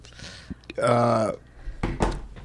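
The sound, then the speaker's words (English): A loud, voiced, drawn-out sneeze rises into a strained tone, then breaks off, followed by short breathy noisy bursts. “So now you're gonna just start sneezing.”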